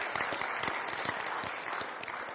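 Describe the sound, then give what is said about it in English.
Steady crowd applause fills the whole stretch, a dense patter of many hands clapping at once, fairly loud, with no voices over it. “Clap good if you're going to clap.”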